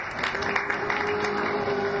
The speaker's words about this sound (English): Gentlemen, thank you very much. A round of applause, folks.